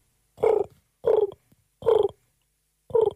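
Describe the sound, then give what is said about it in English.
A person imitates a pigeon with four low, throaty coos, each lasting about a third of a second, spaced in a steady rhythm with short silences between them. “give me one of your strongest, which is your interpretation of a pigeon, please?”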